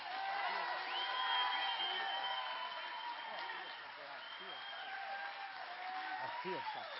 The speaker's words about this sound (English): Okay, clap your hands. Come on, keep clapping. Keep shouting.